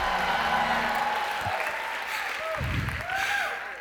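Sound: audience clapping and shouting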